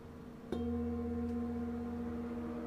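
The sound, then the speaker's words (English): A singing bowl placed on a person's lower abdomen is struck once, giving a soft onset followed by a steady, sustained ring of layered harmonic tones that hum evenly without fading much, like a church bell. “it's kind of that like church bell sound.”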